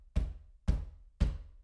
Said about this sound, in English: I wasn't sure what to think, so I woke up my husband just to feel safer. While I was telling him what was going on with the banging on the door, it started again.